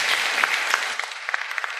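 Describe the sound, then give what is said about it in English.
An audience claps for a woman in a steady round of applause, a dense wash of overlapping hand claps with a few sharper individual claps standing out as it thins toward the end. “Folks, give her a round of applause.”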